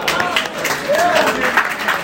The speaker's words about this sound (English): but bringing up the rear today with 31 points is Team Dual Lights. Give them a clap.